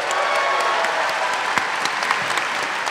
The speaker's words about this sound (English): That was a standing ovation, just in case anyone was wondering. Everybody stood up. Everybody stood up.